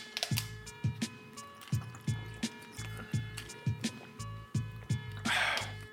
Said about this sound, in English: Grab a water real quick. And I'm back. Pop this water open.